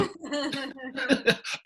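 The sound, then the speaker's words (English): A voice doing an exaggerated, theatrical imitation of a cough, a quick run of about five loud, voiced hacking bursts. “They know how to get that exotic cough.”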